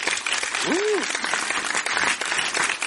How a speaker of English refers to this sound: So congratulations to us, and I'd like a round of applause.